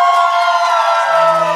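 A studio audience erupts in loud, sustained cheering, high-pitched whoops and clapping for Caroline and her family from TV, holding steady for the whole second and a half with no talking over it.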